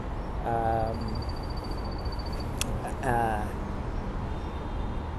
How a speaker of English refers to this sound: And I figured, oh, the ambience of the city and the park. And yeah, I've got the sounds of birds. There's also a big highway right behind me. I'm sitting on a wooden bench that's sort of looking out over the city.